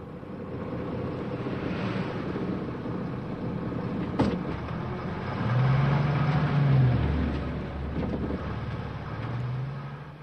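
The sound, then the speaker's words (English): A bus passes a house in Peru at 4 o'clock in the morning, rumbling with steady engine and road noise, sounding a long, low horn blast midway and a shorter second honk near the end to wake people going to the market. No one speaks. “As you can hear here, passing the house, the bus begins in the morning, blowing the horn to wake up these people at 4 o'clock.”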